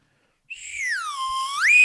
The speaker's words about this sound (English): I think you have to blow at the top. Oh, maybe you know what you're doing. Nope. Turn towards the people. Slide whistle. Oh, that got our dog's attention.